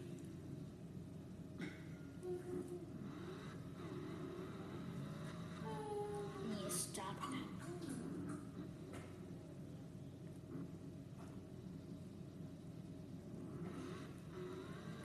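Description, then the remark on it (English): A video game stock car's racing engine drones steadily throughout as the car is taken off pit, with a rising rev sweep around the middle as it accelerates, loud against a constant low rumble. “Get this car off pit.”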